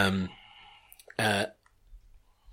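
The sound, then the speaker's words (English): A voice imitates a rumbling stomach upset with diarrhea, with two short, loud, throaty gurgling bursts separated by a brief pause, then a faint low rumble. “A rumbling geezer. Okay. So this is going to be diarrhea, isn't it?”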